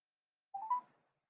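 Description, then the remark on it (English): A quick run of electronic telephone keypad tones as a phone is dialed to call back after a cut-off call, three short beeps stepping upward in pitch and blending together, lasting about half a second in otherwise silent surroundings. “So, okay, I think the phone, we've been having phone difficulties here, and on my side, the phone cut off, so I'm calling back right now.”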